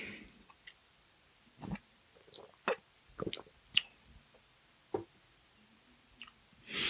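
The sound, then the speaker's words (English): Several brief, quiet slurping sips of coffee and small mug clicks, spaced irregularly, with no one talking. “I also wanted to talk about, hold on, let me get a sip of coffee.”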